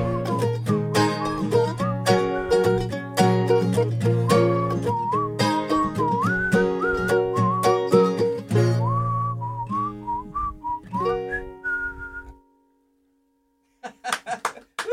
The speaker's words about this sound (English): Whistling's hard. Nice job, guys. Very nice job.